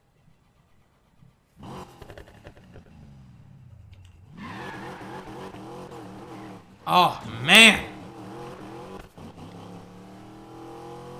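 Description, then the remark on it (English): A muscle car engine is started back up after being shut off, turning over and catching into a deep rumble, then revving repeatedly with two sharp, loud throttle blips near the end; a man briefly exclaims over it. “Listen to how she comes alive when I start her back up.”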